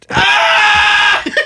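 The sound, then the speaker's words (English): A voice imitates Mickey Mouse screaming as he pulls his head off, a single loud, high-pitched sustained shriek held for about a second before breaking off into a short breathy tail. “Because that's the only way he's screaming.”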